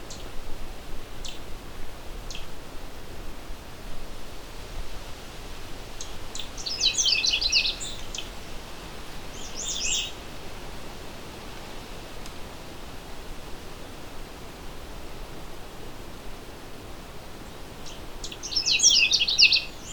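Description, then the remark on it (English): A Canada Warbler sings three quick, warbly, whistled phrases spaced several seconds apart, each short and bright and not very high-pitched, heard close over a steady background hiss. “It's a fast, short, warbly song with a bit of whistly cheeriness to it.”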